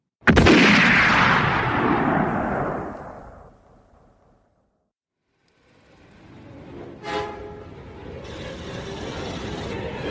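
A single sharp gunshot, the first shot fired at President Kennedy's car, cracks out at the start, sounding like a backfire, then rolls into a long, booming echo that fades to silence before a low rumbling background returns with another faint bang.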